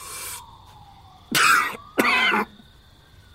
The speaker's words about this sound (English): With great concentration, he takes a drag, then stifles a cough.